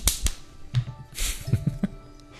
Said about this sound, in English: Those of you who haven't been following me for a while, whenever I do a finger snap, that means this thing was hot. Okay, this was a good, good recording. So this deserves 3 finger snaps.